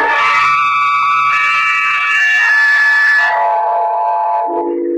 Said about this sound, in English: As far as I can see, there's no one else in here, just the three of us. If it didn't come from this room, where did it come from? And who screamed? That's what I'd like to know.